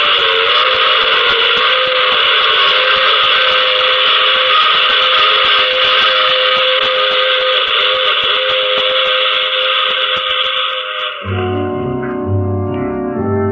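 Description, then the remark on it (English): A loud, sustained train whistle blares continuously over the rumble of a moving train in The Mysterious Traveler, then gives way to a short closing musical sting at the end. “And remember, I take this same train every week at this same time.”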